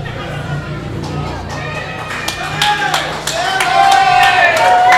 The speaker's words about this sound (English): And this crowd is out of hand tonight. I can't even hear myself think.